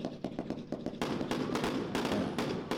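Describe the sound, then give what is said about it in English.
A girandola firework, set off right after a New Year countdown, goes off with a quick run of sharp crackling pops, then swells into a dense, steady roar of hissing sparks with scattered bursts, loud and without voices. “While emitting a spray of sparks and sometimes a whistle. So the girandola sparks and whistles.”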